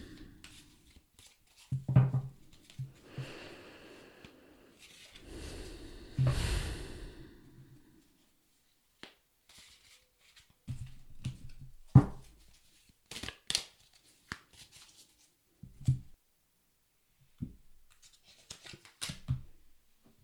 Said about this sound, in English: Now I'm going to pull some tarot cards to see if there's anything else that we need to know. Just give them a good shuffle.